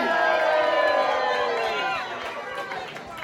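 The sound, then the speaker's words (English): A crowd cheers loudly for the placed finishers as results are announced, many voices whooping and shouting together in a dense, sustained roar that eases off slightly toward the end. “God, he's an extra big cheer.”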